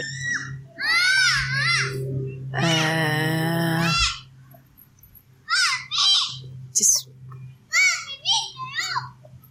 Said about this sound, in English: Is that your kid shouting?